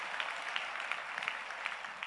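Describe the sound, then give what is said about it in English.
An audience clapping hands together for the Lord, a dense, steady patter of many claps blending into a continuous bright wash with scattered sharper hits, fairly quiet overall and no voices. “In the name of Jesus, clap your hands for the Lord.”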